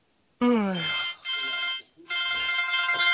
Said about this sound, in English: Answer your phone